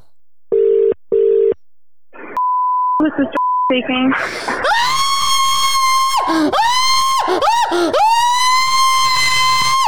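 A couple of phone keypad beeps and a brief ringing tone, then a group of people burst into loud, sustained screaming that carries on, with a few short breaks, to the end.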